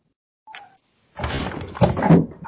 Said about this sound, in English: Cat tried to jump on the desk, missed. And I got a claw in the leg.